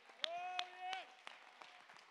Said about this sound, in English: Somebody clap your hand to give him praise.